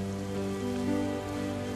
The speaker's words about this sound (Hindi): office की खिड़की से जब देखा मैंने मौसम की पहली बरसात को, काले बादल के गरज पे नाचती बूंदों की बारात को,